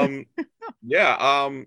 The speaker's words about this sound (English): Then my cat is meowing. But don't know why he wants his voice heard.